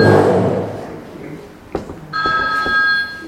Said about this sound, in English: Should change your ringtone. No, you don't think so? She doesn't know that there are options.